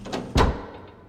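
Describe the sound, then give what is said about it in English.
At a funeral service, a motor catches and a coffin moves up a ramp and through the door of a cremation, marked by a single heavy, muffled thud partway through. A soft mechanical rustle comes before it, then a fading low rumble, with no voices. “But then, the motor catches and the coffin makes its way up the ramp and through the door of its theatrical cremation.”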